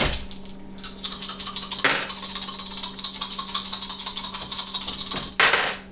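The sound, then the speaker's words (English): A handful of dice clatter and rattle across a hard tabletop for several seconds in a dexterity plus athletics roll during a tabletop role-playing game, a dense run of quick clicks, ending in a couple of sharper knocks as they settle. “Yeah, make me a dexterity plus athletics roll.”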